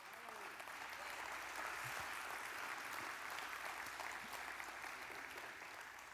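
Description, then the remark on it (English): A crowd claps steadily and loudly for several seconds, a dense wash of hand claps with no pauses and no voices standing out. “And if y'all don't clap there, I'm going to pass out because I need to catch a breath.”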